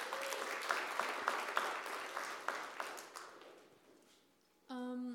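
Audience applause of many hands clapping, loud at first then thinning and fading over a few seconds, ending with a sudden steady tonal hum.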